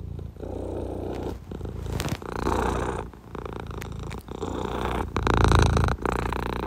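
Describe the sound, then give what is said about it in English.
A cat purrs steadily, a low, rumbling vibration that swells and fades in a regular rhythm of breaths, with no talking over it. “Hey, yo, that purring is mad dope.”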